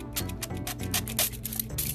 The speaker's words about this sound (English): All right, spray. Yeah, I'm spraying. Smells really great. Oh, oh, nice. Okay, spray your carpet. Spray the curtains.